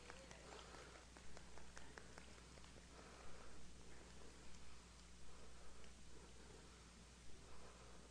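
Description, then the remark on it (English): An audience stomps their feet together on cue to imitate rain, a dense, continuous rumble with scattered sharper thumps rising and falling over a steady low hum. “We just made it rain.”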